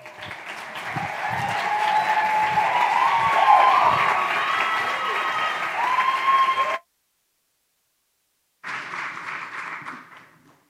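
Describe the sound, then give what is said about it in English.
A crowd breaks into loud, sustained applause mixed with whoops and cheers for several seconds, stops abruptly, then a shorter burst of clapping and cheering follows after a brief silence. “So I want to hear plenty of hooting and hollering this morning from you guys.”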